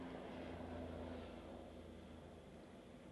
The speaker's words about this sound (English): But, you know, I got a fucking airplane. Fucking airplanes, man.